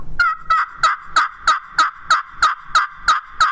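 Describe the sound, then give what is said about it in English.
A friction call sounds a steady run of about eleven hen turkey yelps, evenly spaced, each note raspy and slightly nasal, played with the hen peg striker on the front side of the call, with no talking. “This is my, if I'm going to hen yelp, this is my hen peg on the front side.”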